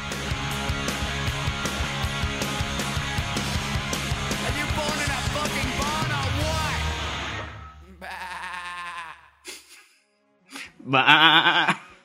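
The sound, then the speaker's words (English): At the end of a song, busy music plays, then drops away as a voice imitates a sheep's wavering bleat in three short bursts, ending with a louder, shakier baa. “That was a very good sheep sound.”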